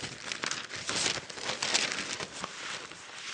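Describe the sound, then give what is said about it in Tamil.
Paper rustling and crinkling as newspaper pages are handled and turned at home, with crisp bursts of crackle over a few seconds, fairly continuous. “நீ பாரு, நம்ம வீட்டுக்கு பேப்பர் வாங்குறோம், எந்த பக்கத்துலயாவது இன்னைக்கு மதுரையில லீவுன்னு போட்டுருக்குதா?”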